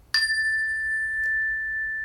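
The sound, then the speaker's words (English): A single cleansing chime, the first of three, is struck once, giving a bright metallic attack followed by a clear, sustained high ring that slowly fades over two seconds with no voices present. “Okay, let's start with three cleansing chimes.”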